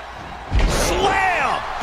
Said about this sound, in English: And slamming her down. Grabs the leg. Just a good old toss for the leg.